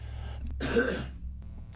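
A single rough cough blends into a gravelly throat clearing, loud and brief, with a low steady hum underneath and no talking.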